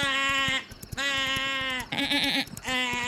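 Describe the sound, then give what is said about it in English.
A person imitates a goat, letting out three loud, wavering bleat-like screams in quick succession with brief pauses between them. “actually just sounded like a goat just now.”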